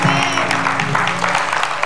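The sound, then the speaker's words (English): An audience claps steadily, a dense patter of many hands filling the room, with a sustained low musical tone underneath and faint voices mixed in. “I mean, give him a good hand clap.”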